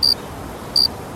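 Two short, high-pitched cricket chirps about three-quarters of a second apart, clear, over a faint hiss of background noise with no talking.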